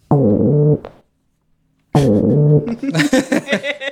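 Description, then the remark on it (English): Digitally processed calls of Sunny, a pet pigeon, being needy: a low, harmonic cooing note, a second's silence, then another call that breaks into a buzzy, warbling burst of sound. “And this is what Sunny sounds like being needy.”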